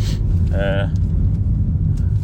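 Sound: car driving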